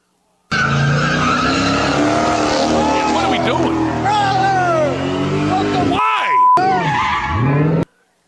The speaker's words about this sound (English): But I thought this one, isn't this one the car? Isn't this one the guy getting hit by a car?